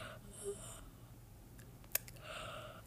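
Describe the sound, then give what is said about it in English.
A soft, breathy yawn, drawn out in two airy stretches with a faint click in the quiet gap between them. No one speaks. “I'm yawning a lot”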